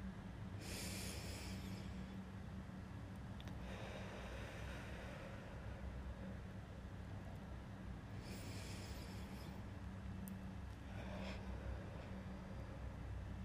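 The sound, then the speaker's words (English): Slow, deep breaths during a breathing exercise, sitting up straight with hands on the ribs: airy inhales and long exhales in roughly two unhurried cycles, fairly loud, over a steady low hum with no talking. “Let's go ahead and take a deep breath in and a deep exhale.”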